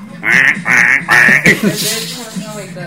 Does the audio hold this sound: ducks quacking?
yes